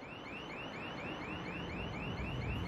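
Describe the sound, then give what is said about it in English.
A loud electronic alarm blares continuously, its pitch sweeping up and down in rapid repeating whoops, steady, with a low rumbling noise underneath and no voices. “How can you hear anything over that alarm?”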